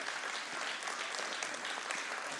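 Steady, dense applause from a crowd welcoming a speaker as he comes up, a continuous wash of many hands clapping at an even level with no voices breaking through.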